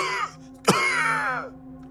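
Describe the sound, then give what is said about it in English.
A woman's strained, wheezing groan breaks into one sharp, harsh cough, then trails off into a long, drawn-out choking moan, fairly loud, with no words spoken. “A deathly cough started to choke her out.”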